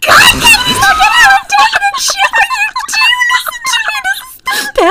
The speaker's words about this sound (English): Hey, girl! You're actually shrieking at me right now. Shut up, you love it.